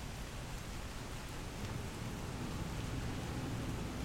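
Steady rain falls in a continuous, even hiss with a soft low rumble underneath, fairly quiet and unbroken for the whole stretch, with no voices.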